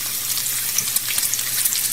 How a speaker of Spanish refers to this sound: Y creo que es el sonido de algo que se está friendo en la cocina. ¿Pero qué es lo que se está friendo? Es un sartén friendo comida.